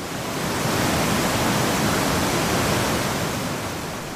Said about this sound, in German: Dort, wo bis vor wenigen Jahren der Triftgletscher noch bis zur Bergstation der Triftbahn hinabreichte, verläuft nun ein reißender Fluss durch Felsen und Geröll.